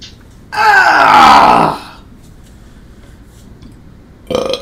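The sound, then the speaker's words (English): A single loud, drawn-out burp lasting about a second, with a falling, croaky pitch. Near-silence follows, then a short burst of noise at the very end. “You could burp in the morning.”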